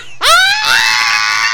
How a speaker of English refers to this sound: We scream!